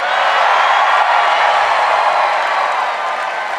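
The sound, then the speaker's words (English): A large audience at a live show on stage at the Ace Hotel in downtown Los Angeles applauds steadily with scattered cheers, a dense, loud wash of clapping that holds evenly for a few seconds before easing slightly at the end. “We're on stage at the Ace Hotel in downtown Los Angeles in front of a beautiful crowd.”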